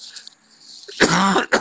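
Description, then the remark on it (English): A single harsh cough bursts out after a near-silent moment, followed by a quick second catch at the very end, with no talking. “I'm going to wear my mask on a plane tomorrow so that if I cough, I'm not going to cough on anybody.”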